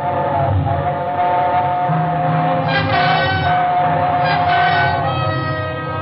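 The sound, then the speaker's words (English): A train roars through a tunnel, a loud, continuous rumble with a droning, tonal screech riding on top, filling the whole six seconds without letting up. “It was only the train going through the tunnel, but it brought it all back.”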